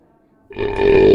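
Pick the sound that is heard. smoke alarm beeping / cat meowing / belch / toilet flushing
belch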